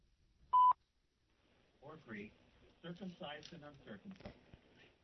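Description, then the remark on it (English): A single brief, loud telephone line tone sounds near the start as a caller is connected to the line, followed by silence and then a person speaking. “I had to get the caller on the line there, so I lost the last part of that scripture.”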